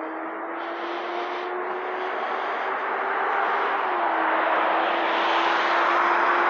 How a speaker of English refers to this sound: We could just do 5-minute segments of no talking and just record it. Like, this is the sound of the street in New Jersey.